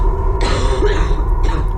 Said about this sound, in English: He was breathing in clouds of heavy coal dust. He was coughing and couldn't catch his breath.